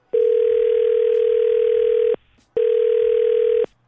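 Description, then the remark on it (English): A telephone line ringing on an outgoing call placed to a man: two steady, loud electronic ring tones, a long one followed by a short pause and a shorter one, with no voices. “We'll call him next with you listening on the phone.”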